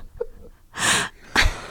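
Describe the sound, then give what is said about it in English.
Two loud, breathy huffs of air blown straight into the microphone, a longer one followed by a shorter one, like panting, with no talking in between. “You sound like a dog, dude. Panting.”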